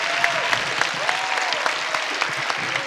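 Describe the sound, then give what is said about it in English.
An audience at UNL's Ian Thompson Forum applauds sponsor OASIS, the University Office of Academic Success and Intercultural Services, steadily: a dense wash of overlapping handclaps with sharper individual claps popping out, sustained at a fairly loud, even level with no talking. “Great round of applause for OASIS.”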